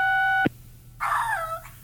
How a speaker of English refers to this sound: Press 2 to hear Duke bark hi.